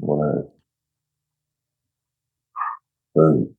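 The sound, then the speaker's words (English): A dog named Chewy lets out a few short, sharp barks in the background, complaining about someone's arrival, separated by stretches of silence, with one thinner, higher yelp between the two fuller barks. “That is Chewy letting rip in the background, complaining about someone's arrival.”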